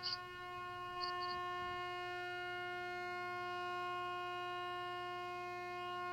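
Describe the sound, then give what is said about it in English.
A loud truck horn blares in one long, unbroken blast at a steady pitch, its rich buzzing tone holding for about six seconds, with a couple of faint high chirps near the start. “It's a loud truck horn.”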